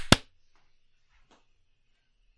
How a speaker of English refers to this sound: Okay, I am ready to clap when you are. All right. I'll count this time. How's that? Okay. 3, 2, 1.